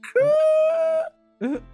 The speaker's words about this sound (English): now that screech I made will make sense in a minute.